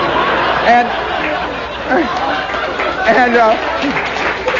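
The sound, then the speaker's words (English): An audience claps steadily for a few seconds, a dense patter of applause with scattered voices and murmurs from the crowd mixed in, holding at an even loudness throughout. “I sense irony in that applause.”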